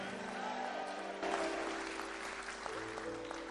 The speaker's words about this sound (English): Clap your hands and shout and receive it.